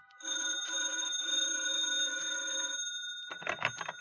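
telephone ringing

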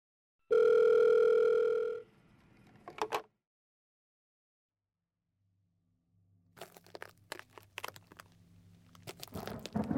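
phone call ringing unanswered

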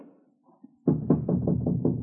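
knocking on a door

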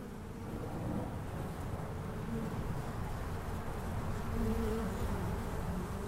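honeybees buzzing

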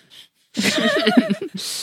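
horse neighing

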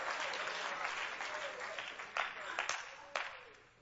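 audience hand claps

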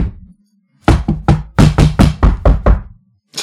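knocking on a door

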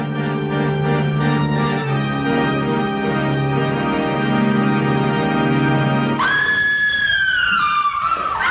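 woman screaming

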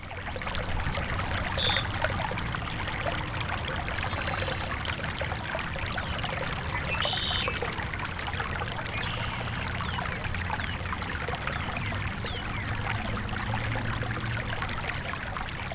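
creek water trickling

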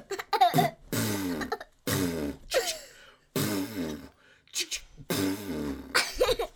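fart noise

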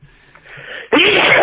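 sneeze

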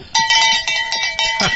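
bell ringing

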